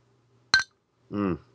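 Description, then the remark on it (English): Glasses of beer clink together once in a toast, a single bright ringing tap, followed a moment later by a short, low voiced murmur from someone. “Thank you again, cheers, guys. This beer is amazing, and cheers.”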